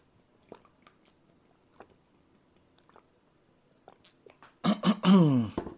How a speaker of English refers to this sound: I'm going to take a drink of water again.